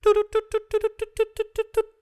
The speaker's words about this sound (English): That's the news buzzer. Perfect. Oh, yeah, the famous news buzzer.